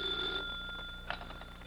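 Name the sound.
telephone ringing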